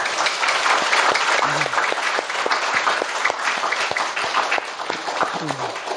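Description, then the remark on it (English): Sustained audience applause, a dense steady wash of many hands clapping at an even loudness throughout, with a faint voice or two briefly audible beneath it. “You should applaud them, yeah?”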